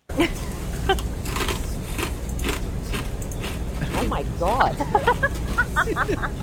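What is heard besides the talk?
loud chewing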